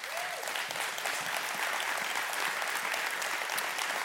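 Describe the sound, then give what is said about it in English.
A large audience bursts into sustained applause, dense and steady clapping for several seconds with a faint murmur of voices underneath. “You clap.”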